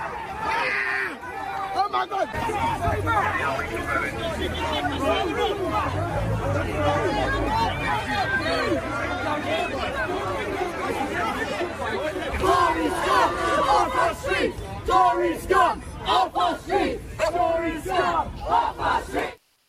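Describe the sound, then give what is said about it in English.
A large protest crowd in the streets of London, protesting about the election, shouts and chants continuously, a dense roar of many voices that breaks in the second half into loud, rhythmic bursts of chanting. “Here's some of the protest scenes from London about the election.”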